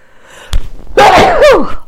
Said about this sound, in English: Oh, now my nose is running and I'm going to sneeze.